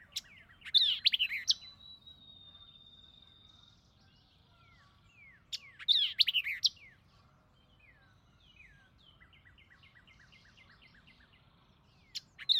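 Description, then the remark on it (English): A vireo sings alone in short, energetic bursts of chirps and slurred notes. One phrase trails into a long, steady whistle, and a quieter series of rapid notes follows over faint background hiss. “namely the red-eyed vireo, the white-eyed vireo, the warbling vireo, the yellow-throated vireo, and the solitary vireo.”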